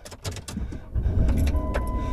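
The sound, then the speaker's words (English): A brief metallic jingle of car keys, a few quick rattles, then a low vehicle engine rumble takes over and holds steady. No one speaks. “She runs back out, jumps into the car, gives Wolf the keys”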